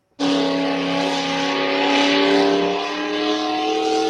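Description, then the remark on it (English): The small block Economod engine of a pulling tractor, driven by a young woman at a tractor pull in Safford, bursts into a loud revving roar and holds it steadily for about four seconds, with a harsh, buzzing growl and no voices. “She just bought this tractor at this pull, and she's learning this small block Economod.”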